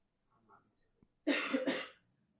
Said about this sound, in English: Yeah, the cough. Yeah. The cough was appropriate there. That is the most appropriate cough to what I just said. Yes. Silence and then a cough.